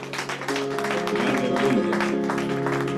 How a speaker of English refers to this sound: You got to clap hands for yourself.